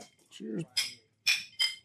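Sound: glasses clinking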